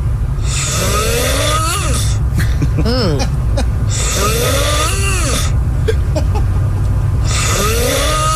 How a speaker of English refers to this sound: he has an interesting snore, to say the least.